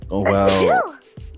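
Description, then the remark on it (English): A single loud sneeze with a drawn-out voiced wind-up and a sharp breathy burst, followed by a brief pause and then someone starting to talk. “Honestly, it's kind of weird out here, though, because I'm about to sneeze.”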